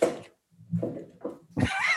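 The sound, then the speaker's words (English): A chair creaks and rattles in a few bursts as someone moves around on it, with squeaky, wavering tones and low knocks, pausing briefly before a longer, higher-pitched creak at the end. No one speaks. “Just hear your chair rattling.”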